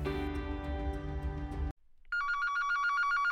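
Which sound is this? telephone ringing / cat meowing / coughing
telephone ringing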